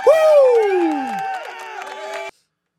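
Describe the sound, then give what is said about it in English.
A crowd cheers with a loud, falling whoop over sustained voices and scattered clapping, then stops abruptly after a couple of seconds. “I am 100% going to give that a nice applause, because...”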